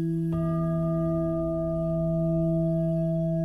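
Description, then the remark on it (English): A prayer bowl rings with a smooth, steady tone, its sustained pure partials humming evenly after a soft strike near the start and holding at constant loudness throughout. “You might think of useful electric energy like the smooth, steady sound of a prayer bowl, like this.”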